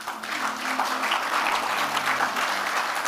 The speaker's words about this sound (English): Close your eyes. Give the Lord a clap.